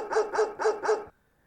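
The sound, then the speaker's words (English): A dog barks four times in a quick, even rhythm, sharp, then falls silent. No one speaks. “Why would you say my dog was chewing on my headphone.”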